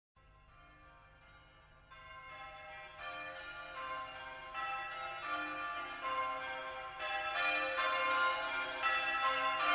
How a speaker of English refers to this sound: So yeah, even like the way it opens with the bells just feels like you're entering another realm. I love that.